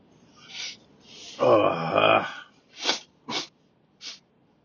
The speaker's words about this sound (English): I hate it. I can't sneeze.